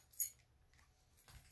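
House keys give a brief, faint metallic jingle near the start, followed by soft handling and rustling noises. No one speaks.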